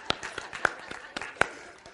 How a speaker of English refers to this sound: Yeah, thank you. Golf clap, golf clap.